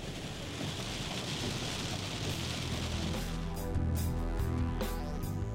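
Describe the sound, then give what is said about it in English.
Heavy rain pours down in a dense, steady roar at Dallas-Fort Worth International Airport in Texas, constant throughout, with a faint low mechanical hum joining partway through. “It is downpouring, man.”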